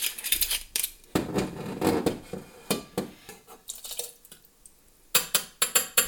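About 2 ounces of white rum pours from a jigger into a cocktail shaker holding lime juice and no ice, in a short, thick-sounding stream, framed by sharp clinks and taps of metal and glassware before and after. No one speaks.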